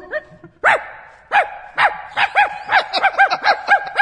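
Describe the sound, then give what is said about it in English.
A dog barks repeatedly, starting with a few spaced, sharp barks and then breaking into a quicker run of loud yaps with no one speaking. “I want to get my doggy back now.”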